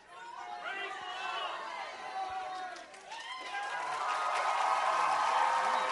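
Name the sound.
round of applause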